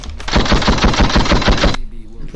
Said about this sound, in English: You put gunshots on him? Yes, I did. Yes, I did.